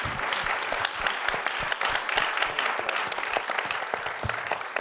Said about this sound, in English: It's incredible. It's amazing. A round of applause.